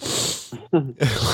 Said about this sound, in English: I accidentally sniffed the mic because I was thinking about what it would be like if the mics had a smell, and then you can hear the sniff.